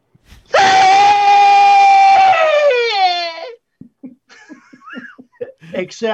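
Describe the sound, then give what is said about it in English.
A person imitates a rabbit's death scream: one loud, sustained, strained shriek lasting about three seconds that sags and wavers at the end, followed by quieter talking and laughter. “I mean, you ever hear a rabbit scream its death throes?”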